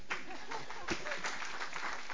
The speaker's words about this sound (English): You can go ahead and clap, guys. It's okay.